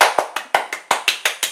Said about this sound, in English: So, first of all, clap it up, clap it up, clap it up. Let me clap away from the mic.